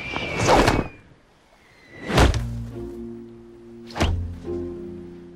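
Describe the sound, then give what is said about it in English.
Foley of three heavy, dull thuds as Jonah and a companion, belched out by a whale, slap down onto beach sand, spaced a couple of seconds apart, the first preceded by a quick swoosh, with a low sustained tone lingering beneath the later impacts. “That Foley when they slap against the sand.”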